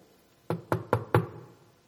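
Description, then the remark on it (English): Four quick, firm knocks on a door in an even rhythm, fairly loud, followed by quiet. No voices. “And knocking clearly is about what we do, because we knock on a door.”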